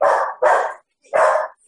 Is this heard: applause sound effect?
no